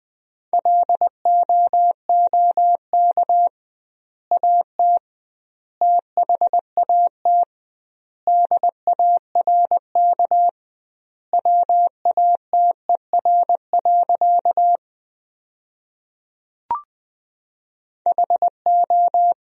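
Morse code at about 20 words per minute with doubled word spacing, sending practice sentences made from the 500 most common words: a single steady mid-pitched tone keyed into quick short and long beeps, grouped into words separated by longer pauses, with one brief click near the end.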